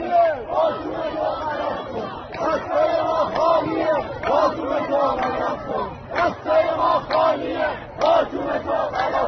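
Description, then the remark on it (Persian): A large protest crowd chants the slogan "the baton is your crime, our hands are empty" in unison, voices rising and falling in a steady rhythmic cadence, loud and dense with many people shouting together. “بعد مردم میگن باطوم تو خلاف کن، دستای ما خالیه.”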